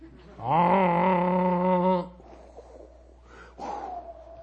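A voice imitates a foghorn with one long, deep, steady droning blast lasting about a second and a half. Quieter breathy vocal sounds follow after it.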